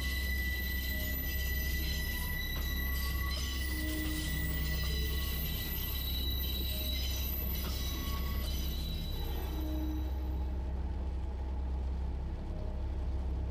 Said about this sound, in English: Oh my God! What was that? The train is slamming its brakes. We're skidding. The rain is making us skid. The screeching is hurting my ears.